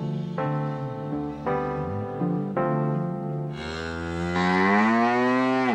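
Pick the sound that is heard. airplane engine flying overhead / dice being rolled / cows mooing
cows mooing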